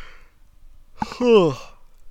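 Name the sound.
yawning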